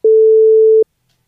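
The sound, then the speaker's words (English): A single steady censor beep bleeping out a presenter's name, a pure mid-pitched tone held for just under a second at full loudness, then silence. No voices are audible. “Tell me who that is. I'll beep the name out.”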